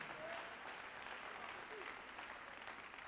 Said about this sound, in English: Say, I am empowered. Clap your hands like you mean that, will you? Come on, send up a hand praise to the Lord.